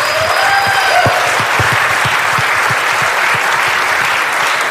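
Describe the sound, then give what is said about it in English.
A crowd applauds steadily for everybody who came out for a band tonight, a dense wash of many hands clapping at an even, loud level. The audience is not standing, just clapping. A few faint whistles rise over the clapping early on and no one speaks. “Let's give everybody a big round of applause.”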